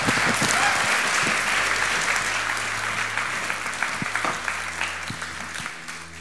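A crowd applauds steadily for about six seconds, a dense wash of clapping hands that stays loud before gradually thinning and tapering off at the end.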